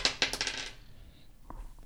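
Dice clatter across a hard tabletop in a quick burst of bright clicks and rattles as players roll to decide who goes first, then settle with a couple of faint, scattered taps, fairly quiet.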